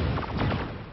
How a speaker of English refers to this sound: When we start to hear some gunfire in the distance, and Andrea's immediately like, well, that's my boyfriend. So as the shooting breaks out, the other guardians demand the rogue guardian Bob come out to face them.